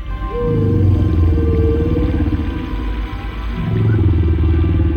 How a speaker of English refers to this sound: Okay, so you get a little whale sounds and you get me, a whale.